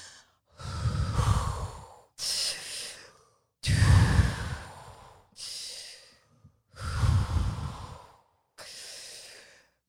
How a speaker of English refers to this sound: I'm starting to feel a little lightheaded. It's kind of nice. Okay, you should probably slow down your breathing a bit.